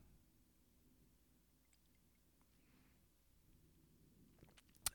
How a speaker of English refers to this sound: Let me take a sip before I get into this.